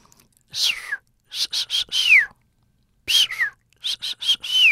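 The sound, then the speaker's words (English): The signature whistle of a dolphin named Peter repeats in two clusters of short, high, breathy bursts. Several end in a bright downward-gliding squeal, with brief silent gaps between groups and no talking. “But what they do know is that each dolphin seems to have its own kind of signature whistle.”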